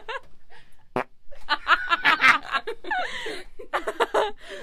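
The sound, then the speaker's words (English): A loud, sputtering fart noise blurts out into a microphone, followed by a burst of snickering and chuckling laughter over a few seconds. “Just let it rip. Put the microphone.”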